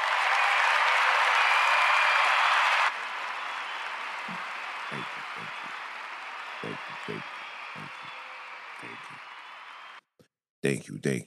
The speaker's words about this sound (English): Round of applause.